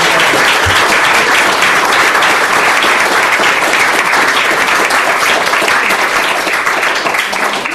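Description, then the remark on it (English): Sustained audience applause, a dense, steady wash of many hands clapping at a loud, even level throughout, with no pauses and no voices standing out. “A round of applause, please, for both.”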